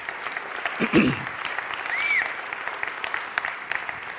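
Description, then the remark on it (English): A church audience claps for the worship band on a Sunday morning, a dense wash of many hands with a few whoops rising over it, holding at a fairly even level throughout. “So let's give them a round of applause, man.”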